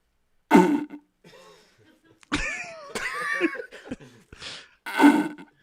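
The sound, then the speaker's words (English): A person blows wet, raspy fart noises with their mouth, imitating a toilet fart: a short burst, then a longer warbling, sputtering stretch, ending with another loud blurt. Fairly loud. “That's a toilet fart without being a toilet fart.”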